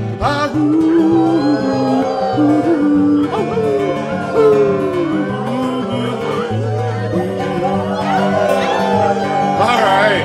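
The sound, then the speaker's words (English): A crowd of people imitates a coyote chorus, overlapping howls and yips sliding up and down in pitch, loud and continuous for about ten seconds with no break. “You know it sounds to me like a mountain symphony when I hear coyote choir fill the skies.”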